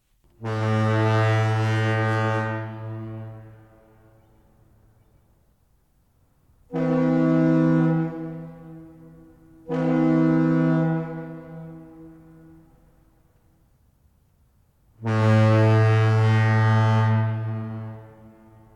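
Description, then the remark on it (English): A deep, booming San Francisco foghorn in the Bay Area sounds four long, loud blasts: one, then a pair close together, then a final one, each trailing off into open air with no voices present. “We have a San Francisco foghorn.”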